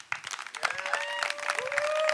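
An audience breaks into dense, steady clapping that keeps building, with a sustained cheering whoop rising in pitch over the applause.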